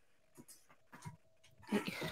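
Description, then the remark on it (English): A puppy noses and licks at an empty bowl, with a string of soft scrapes, knocks and snuffling that build to a louder, busier clatter at the end. “I got a puppy, and he going ham on an empty bowl.”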